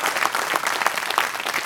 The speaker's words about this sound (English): Come on, church. Come on, clap like you mean it. Praise God.